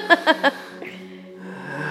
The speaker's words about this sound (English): Yawning.